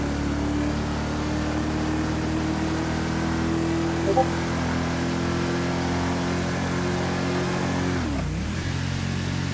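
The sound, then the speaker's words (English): A video game car's steady engine drone hums throughout, holding a constant pitch before dipping and revving again near the end as the car is driven to park in a parking lot. “Here, let's park it up top in this parking lot for Fiverr.”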